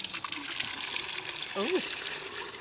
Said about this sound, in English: I don't want to hold this microphone close to you while you splash. Oh, it does smell.